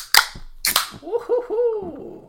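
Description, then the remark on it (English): A beer can cracks open with two sharp, loud snaps about half a second apart, followed by a brief wavering, tonal hiss-like whine that fades out. “Well, let's pound this one here. Let's open it up for everyone.”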